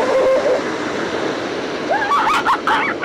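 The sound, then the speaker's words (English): Ocean surf washes in a steady, full roar, with a few brief high chirping calls rising over it near the end. No one speaks. “And now we travel from forests to seas.”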